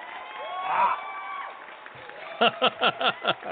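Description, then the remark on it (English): A canned clap track: a cheering, whooping crowd swells for a couple of seconds, then five or six loud, evenly spaced unison claps ring out in a steady rhythm. “Here's your clap track.”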